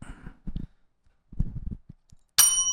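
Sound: bell being rung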